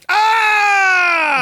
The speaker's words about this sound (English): Why am I the only one yelling? Because you do it so well.